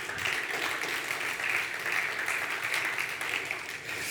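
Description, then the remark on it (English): Steady applause from an audience, a dense wash of many hands clapping at an even level for several seconds with no pauses, with no voices rising above it. “You clap. It's okay.”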